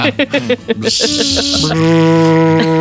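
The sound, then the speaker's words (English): A voice imitates a buzzing carpenter bee: a few short choppy vocal bursts, then a loud, sustained nasal drone that drops slightly in pitch and holds steady to the end. “Carpenter bee there.”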